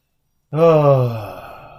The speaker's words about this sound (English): Good breath. I don't think I've been breathing. No, I've been trying to breathe more. Breathing's so important, yo. Take that breath.